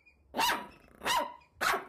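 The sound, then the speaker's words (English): A hound dog puppy barks three times in a steady rhythm, each bark loud and sharp, with short quiet gaps between them and no voices. “Imagine your new college roommate brought home a new hound dog puppy.”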